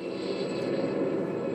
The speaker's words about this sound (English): That private jet carrying a frail Casey Kasem flew northwest from Vegas, landing in Seattle.